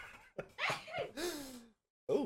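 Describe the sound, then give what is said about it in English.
Short breathy gasps build into a loud, hissing sneeze with a falling voiced tail, then a brief pause and another sharp burst of sound at the end. “Oh, geez. Bless you.”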